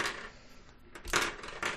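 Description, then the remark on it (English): Six small dice clatter and rattle in a few quick bursts as a drunk player paws at them and knocks them about on a table, with brief pauses between clicks. “That was not a roll. I will have all of you know I'm just drunk and just pawing at my dice.”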